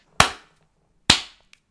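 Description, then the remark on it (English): Two loud, sharp hand claps spaced nearly a second apart, a deliberate slow clap with no voices, followed by a faint tiny tap. “I wondered if it'd get you a slow clap off you, but it didn't.”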